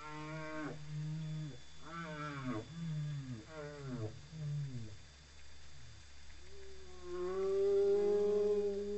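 Whale song: a series of low, drawn-out moaning calls that swoop up and down in pitch, ending in a longer, steadier tone that swells louder. No one speaks.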